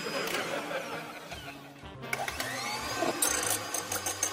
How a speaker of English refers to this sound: I love whisking, don't you? Oh, whisking? Ah, you need Annie's magic whisk.